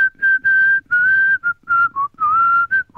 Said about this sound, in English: I think I should probably include this bit in the podcast. Just the bit of me whistling.